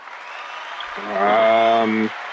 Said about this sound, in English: Claps for her.